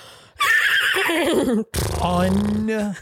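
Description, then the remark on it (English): A person's voice imitates a horse neigh, loud, a shrill, quavering whinny that breaks briefly and then rolls into a second, lower fluttering snort-like whinny. “Do your horse sound.”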